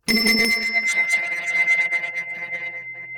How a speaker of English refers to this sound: Oh, the other thing I have is a beautiful bell that I had made in Bali, and it's a bell for holding sacred space.